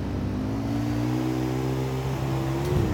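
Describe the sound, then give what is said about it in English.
A video game motorcycle engine drones loudly and steadily, its pitch creeping gradually upward as it revs, with a brief throttle blip near the end and no voices. “This could be dangerous on a motorcycle.”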